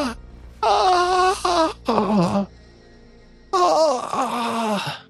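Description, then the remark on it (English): Loud, drawn-out wailing moans in pained bursts, rising and falling in pitch, with a brief quieter gap before another anguished cry, echoing through the halls of the Dawnflower Library. “And they can hear echoing in the halls, like pained moaning and screaming.”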